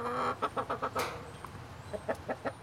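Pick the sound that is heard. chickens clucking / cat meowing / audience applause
chickens clucking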